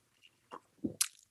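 Someone sipping plain coconut water, with nothing else in it, from a tall, cool glass: a few quick, wet mouth sounds, a soft low gulp, then a short hissy slurp, with no talking.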